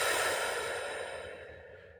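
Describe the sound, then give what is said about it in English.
A single slow, steady exhale during a breathing exercise, breathy, gradually fading over about two seconds with no talking. “Out.”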